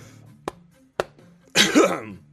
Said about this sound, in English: Ooh, I'm like gonna cough to death. I'm gonna choke to death.